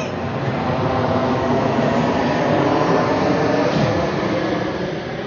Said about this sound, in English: Oh my God, planes.